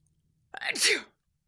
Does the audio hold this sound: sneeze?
yes